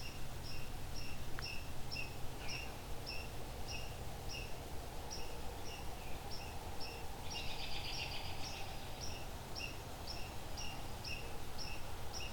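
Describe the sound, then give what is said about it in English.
A white-throated sparrow calling: short, high chip notes repeated steadily about twice a second, faint, with a brief busier flurry midway, over quiet outdoor ambience. “A very talkative, I think that's black, or sorry, that's a white-throated sparrow, that call.”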